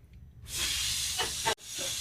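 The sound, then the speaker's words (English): Someone blows out birthday candles with a long, forceful, breathy whoosh lasting about a second, then a brief pause and a second strong puff of air. There are no voices. “All the candles out without getting wax on everything.”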